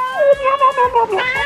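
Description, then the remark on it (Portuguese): A cat meows in a quick run of drawn-out, wavering cries that rise and fall in pitch, loud, with no talking underneath. “Que foi isso? Para de brincar com o gato.”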